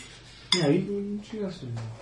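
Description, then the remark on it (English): Dice are rolled in a game against a target number. They rattle and clatter onto a hard surface in a short burst of sharp clicks and land two on both dice, with a voice sounding faintly underneath and just after. “Two on both dice.”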